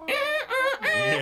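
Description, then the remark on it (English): A voice imitates a squawky, chicken-like guitar effect from a protest song's instrumental part after the second chorus, in three quick nasal squawks, rising and bending in pitch, loud with no other sound. “That sounds like a fucking chicken playing a party blower to me.”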